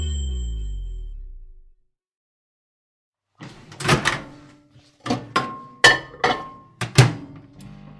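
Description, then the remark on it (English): A microwave heating a mug of custard: its low motor hum winds down and stops; after a pause come several sharp clunks and clicks of its door and buttons, with a brief electronic beep among them. “Just microwaving a mug of custard.”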